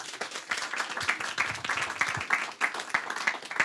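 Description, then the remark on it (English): An audience at a Readings author event breaks into applause for author Bruce Wolpe, a dense, steady patter of many hands clapping at once that holds at an even, fairly loud level for several seconds with no voices over it. “Please give a warm round of applause to the author of the night, Bruce Wolpe.”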